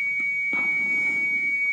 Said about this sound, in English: Some sort of an alarm. Should we be running? No one else is. I know. I'm looking to see if anyone else was panicking when that alarm went off.